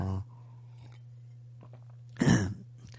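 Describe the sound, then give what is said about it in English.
A single short sip and swallow of water, a brief wet gulp against a steady low electrical hum, with no talking. “So I'm just going to get a sip of water.”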